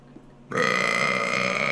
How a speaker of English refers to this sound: What a classy burp.